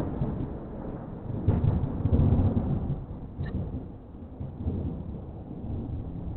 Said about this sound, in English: It's going to storm.